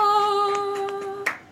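A steady ringing tone cuts off, followed by two sharp hand claps a moment apart, with a few fainter taps before them and no talking.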